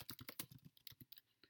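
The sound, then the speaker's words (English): Rapid typing on a laptop keyboard while writing an email, a quick irregular run of crisp key clicks with no talking. “I hope that the typing gets heard on this because we're recording on the laptop.”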